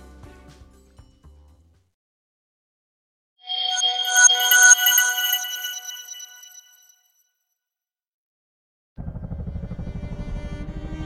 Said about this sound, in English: Turia still remembers the sound of the helicopter racing across the sky to rescue her and her fellow runners.